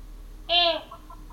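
A chicken being fed gives one loud clucking squawk lasting under a second, followed by a couple of faint, brief clucks in the background.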